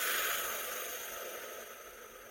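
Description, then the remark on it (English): A person takes a deep, calming breath while hugging themselves with both hands crossed over the shoulders: a soft, airy rush that is strongest at the start and slowly fades over a couple of seconds. No one speaks. “Other things that you can do is give yourself a hug, just like this, both hands crossed over each shoulder, and then just breathing nice and deep into that hug.”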